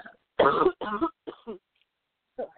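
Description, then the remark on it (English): A sick person coughs and clears their throat in a quick cluster of harsh, raspy bursts, fairly loud, trailing into a couple of softer throat-clearing rasps with short pauses between. “Wouldn't be the first time we did a show and I was coughing all over it.”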